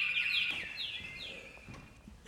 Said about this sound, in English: Now, occasionally you get a really loud bird and you cover them up so they'll stop singing.